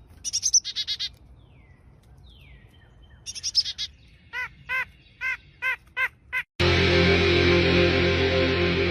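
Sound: bird chirping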